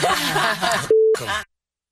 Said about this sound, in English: See, that's take them. take them. And when you bleep it out, it sounds beautiful.